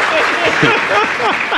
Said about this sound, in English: Hey, what's up, everybody? That's the first applause I've gotten in a while.